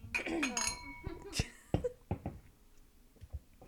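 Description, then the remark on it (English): Several glasses clink together in a toast near the start, a bright ringing chime followed by a few sharp knocks, with people murmuring and laughing around them. “Would we all drink to that? Cheers. Cheers.”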